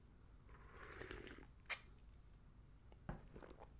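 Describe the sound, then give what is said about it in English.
A quiet slurping sip of hot coffee, followed by a soft click and a faint swallow or mouth sound a moment later, with no talking. “Quick sip of coffee, balls.”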